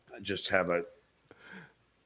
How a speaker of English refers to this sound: The thing with the yawns here. Yeah, you're just bored out of your mind. A lack of energy. Yeah, you're just bored.